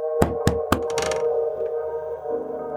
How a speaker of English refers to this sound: Another couple of minutes went by and I knocked again.